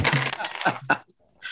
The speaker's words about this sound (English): Right, come on, these dice haven't let me down all night, so you know.